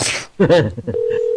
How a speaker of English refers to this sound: I imagine her just angrily looking at the phone, just as it rings, ring. She's just not picking up, though.